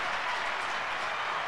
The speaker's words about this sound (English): Give her some applause or something. There you go. Yeah, there we go.